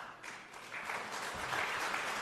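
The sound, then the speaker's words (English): Steady applause from a sizable group in the Colorado legislative chamber during a speech on the Tabor surplus and tax relief, with no Democrats clapping. Dense overlapping claps form a continuous wash of sound at a fairly even, moderately loud level throughout, with no voices over it. “Not a single Democrat hand is clapping, by the way.”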